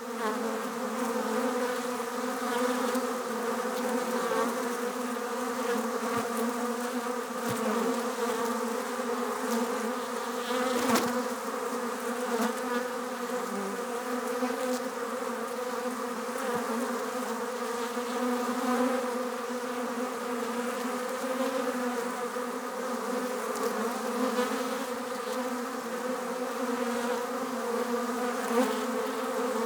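A dense, steady drone of many bees buzzing together, like a busy hive, holding an even loudness for the whole half minute with no voices.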